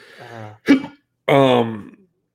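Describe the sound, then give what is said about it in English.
A single sharp, abrupt hiccup, sandwiched between two short wordless voiced sounds, like a hum or groan, before and after it. “So hiccups are fun. They hurt.”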